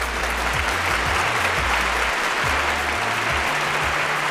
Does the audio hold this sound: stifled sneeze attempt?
no